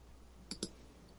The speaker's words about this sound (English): Hang on, let me finish typing this out.